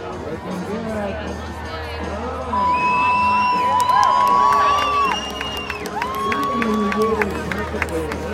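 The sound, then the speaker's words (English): A rodeo crowd cheers and hollers as a rider tries to stay on a horse that is trying to buck him off, with sustained high whoops and shouts rising over a dense roar that swells louder partway through and stays energetic. “so I took a video of one person who's riding a horse that's trying to buck him off, and I just want you to imagine that you are the person riding that horse and what that must feel like.”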